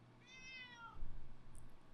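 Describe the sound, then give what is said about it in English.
A cat named Junior gives a single drawn-out meow that falls slightly in pitch, clear, followed by low rumbling background noise with no one speaking. “See? Cats and people can live in harmony.”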